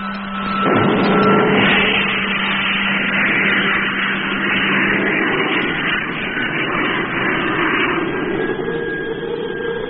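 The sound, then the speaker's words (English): The rocket motors of the spaceship Discovery fire in a loud, continuous roar that surges at the start and then holds steady, with a thin whining tone running through the rumble and no voices. “Stand by for firing. In 5 seconds. 4, 3, 2, 1. Contact!”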